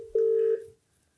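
A single steady telephone tone, like a dialing beep, sounds clearly for under half a second as someone phones their dad late at night, then fades into quiet background noise. No one speaks.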